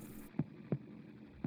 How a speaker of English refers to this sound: Listen to that heartbeat.